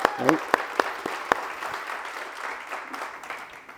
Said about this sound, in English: Before I begin, I want to thank Randy. And Randy deserves a round of applause, guys.